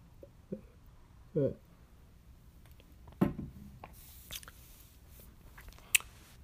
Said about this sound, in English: Let me sip this lemon water.